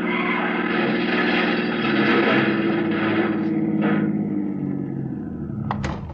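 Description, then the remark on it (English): A suspect's sedan engine roars loudly and steadily as it speeds toward a park, going around a car blocking the street, its droning whine holding throughout, with a couple of brief sharp bangs near the end. “He isn't going to stop. He's trying to go around Asher's car.”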